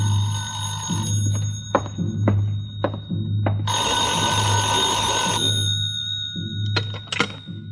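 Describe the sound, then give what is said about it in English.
An old-style telephone bell rings in a small side-street hotel as a call finally comes in, one loud, sustained burst of about two seconds, with sharp clicks and rattles before and after, all over a low, steady hum. No one speaks. “That 6 o'clock plane must have been way out over the Caribbean when the call finally came.”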